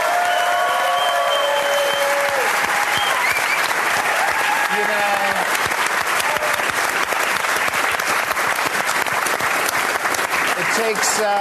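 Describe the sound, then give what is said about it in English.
A live show audience applauds the host's guests loudly for about eleven seconds, a dense, steady clatter of clapping with a few high whoops and cheering voices mixed in, especially early on. “Can we have a big round of applause for all my guests tonight?”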